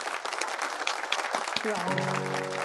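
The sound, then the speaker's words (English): A crowd applauds as a send-off for someone leaving, with dense, steady clapping throughout, and about halfway through a sustained musical chord rises beneath the applause and holds to the end. “So let us give a round of applause as a send-off.”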